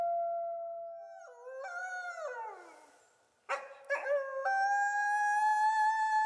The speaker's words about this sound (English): they all have their own voices. But when they're howling together, they're going to have those voices, but also some of the harmonies. So it makes the family sound larger.